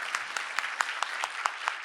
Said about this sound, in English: Can you applaud them? Because it's literally like, thanks to them.